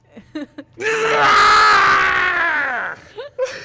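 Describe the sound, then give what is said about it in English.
A man, screaming in character as if being zapped with electricity, lets out a loud, sustained scream lasting about two seconds, mock-pained, shifting back and forth as he screams, with brief bits of speech just before and after it. “And he kind of shifts back and forth screaming.”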